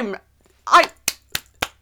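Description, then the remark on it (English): A short vocal sound gives way to four sharp, evenly spaced, moderately loud hand claps, a lone pair of hands mimicking applause. “Applause.”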